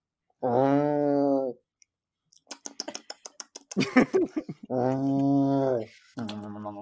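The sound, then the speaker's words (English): A person mimics a cat growling while eating garbage: two sustained, buzzy vocal growls, separated by a burst of rapid wet clicking and chomping mouth noises, then a shorter final growl. “You don't sound like a cat anymore. You sound like a rhino.”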